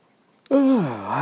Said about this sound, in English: Yawning hurt. And I have another one coming. Fuck. It's gonna hurt again.